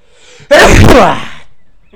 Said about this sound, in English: You got a sneeze building up.